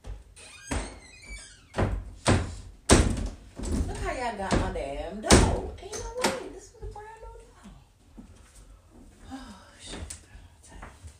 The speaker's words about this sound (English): I got my damn door. Ain't no way. This was a brand new door. Oh, shit. Look how this door closed, y'all. Look. Easy. Simple.